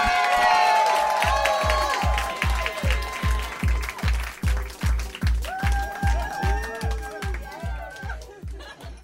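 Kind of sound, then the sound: crowd, audience clapping and cheering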